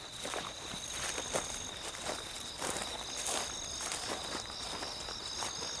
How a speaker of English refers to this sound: This sound is coming from crickets. Yeah, crickets. Not the sport cricket. This humming and pulsing is coming from the insects called crickets. So that means there's crickets living at the cricket oval.